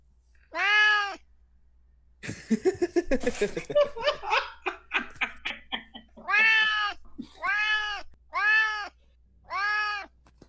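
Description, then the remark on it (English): A cat meows, then people laugh for a few seconds before four more drawn-out meows follow at a steady pace, each clear and fairly loud, one with a little bit of purr in it. “Oh, that was the best one because it had a little bit of purr in it.”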